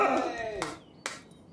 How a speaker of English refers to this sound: That was the single person clapping. Good job. The one guy in the back, he's like...